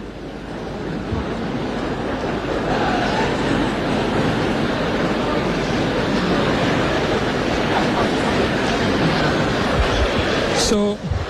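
A large crowd of Achimota School students roars in unison in prayer for their schoolmates on stage at the National Theater, a dense, steady wall of many overlapping voices that stays loud and sustained throughout, with no individual words standing out.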